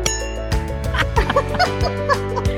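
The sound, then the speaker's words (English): A bell rings out in steady, repeated strikes about every half second to ring in the new year, 2024, each tone ringing on and overlapping the next, loud, with a faint murmur of voices underneath. “We want to ring the bell with you on this new year.”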